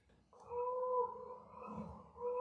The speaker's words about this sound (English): Wow, somebody's pretty upset out there. Yes. Let's just listen to cattle for the rest of the show. That's fine. Five minutes of cows.